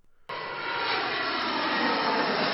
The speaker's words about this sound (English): We're on an airplane.